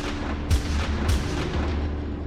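Two sharp gunshots, fired at a man by a person who got out of a car that pulled up beside his parked car, ring out about half a second apart, each a loud crack with a booming low tail, over a steady low rumble with fainter follow-up thuds.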